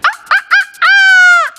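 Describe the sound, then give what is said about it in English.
A hen in a chicken coop clucks three times in quick, sharp bursts, then lets out one long, drawn-out squawk, loud with no talking. “Soon the dosa rolled into the chicken coop. The chicken began to fly over him.”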